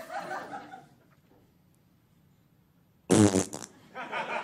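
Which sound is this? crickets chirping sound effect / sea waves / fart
fart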